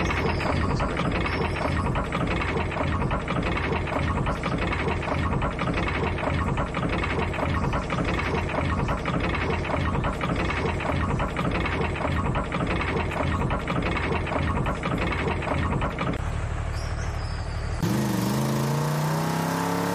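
A roller coaster rumbles along its track in a steady, loud mechanical roar with rapid clattering, then the noise drops away near the end into a brief rising whoosh.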